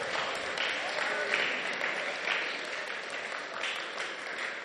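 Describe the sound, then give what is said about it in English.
An audience at a worship service claps steadily for several seconds as a clap offering, a dense, even patter of many hands at moderate loudness with no pauses, with a faint murmur of voices blended into the applause. “If I were you, I would give a clap offering on to that.”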